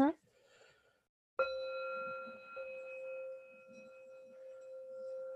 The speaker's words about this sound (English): but I have a singing bowl. It's just how I close with like a prayer. So I'm just going to play it for a second